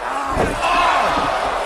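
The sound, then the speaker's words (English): A wrestling arena crowd at the AEW Full Gear pay-per-view, during the Lights Out match between John Moxley and Kenny Omega, cheers loudly for Moxley, a dense, sustained roar of many voices with scattered shouts rising out of it, holding steady for the whole couple of seconds. “And this crowd is loving him.”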